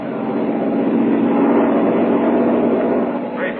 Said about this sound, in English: But what of the coal? Perhaps tomorrow the Americans will have it for us. Perhaps it is on that very train we are hearing now.